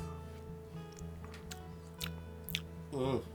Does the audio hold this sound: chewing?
yes